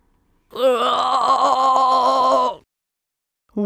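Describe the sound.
A voice imitates a bullfrog's pained, screaming croak: one sustained, strained groaning wail lasting about two seconds, loud and harmonically rich with a slight wobble, followed by silence and the start of another cry.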